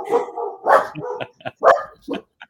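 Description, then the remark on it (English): Two dogs, Ahsoka and Penelope, bark in a quick, uneven string of sharp yaps and woofs, several loud bursts with short gaps between them, and no one talking. “I will have everyone know that the dogs are not making a sound.”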